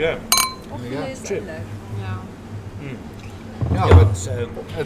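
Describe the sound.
Glasses clink together once in a short, bright toast near the start, close and clear, while people keep talking in the background throughout.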